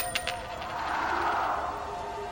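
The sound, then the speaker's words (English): A quarter that had been stood on edge all day is knocked over on a hard counter with a couple of quick clicks, then keeps up a steady metallic whirring ring as it spins, with no one talking. “I had that other quarter standing up all day, and nobody knocked it over till now.”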